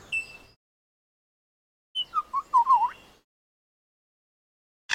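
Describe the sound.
A bird that mimics sounds it hears in the forest imitates a camera shutter: a quick, fairly quiet run of five or six clicking, warbling bursts, with a brief chirp before it and a short sharp sound at the end.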